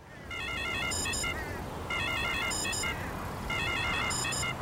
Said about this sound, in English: It was at when the National Security Advisor's phone rings with like an eerie, very scary kind of ringtone thing, indicating that a STRATCOM is calling.